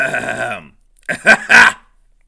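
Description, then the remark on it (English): A drawn-out, buzzing vocal groan gives way after a short pause to three rough, raspy throat-clearing bursts, the last the longest and loudest, with no speech around them. “A little, just clear my throat there, you know.”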